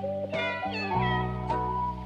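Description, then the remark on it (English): A voice sings a string of drawn-out, wavering meows in imitation of a cat, four or five notes in a row, fairly loud over a steady sustained tone, as part of a song in a film. “It's a scary song. Meow, meow, meow.”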